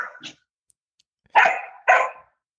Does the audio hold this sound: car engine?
no